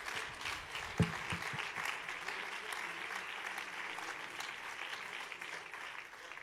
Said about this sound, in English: Why don't you just clap your hands right now if you're glad Brother Hughes is here with us.